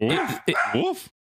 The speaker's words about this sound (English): Sorry, my dog is barking.